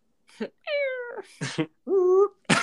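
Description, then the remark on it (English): A person mimics a cat's meow, with two drawn-out, tonal mewing calls broken up by short breathy bursts, ending in a sharp hiss-like puff. “I don't know why I made a cat sound.”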